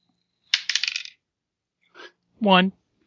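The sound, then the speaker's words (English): Dice are rolled and clatter and tumble across a hard table for about half a second in a quick burst of rattling clicks, followed later by a short murmur and a brief voiced sound from someone. “So -5 dice.”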